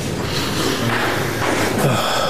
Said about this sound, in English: Smelling his dirty sock now.